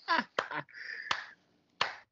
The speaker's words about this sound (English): You done clapping now? That was. You done clapping?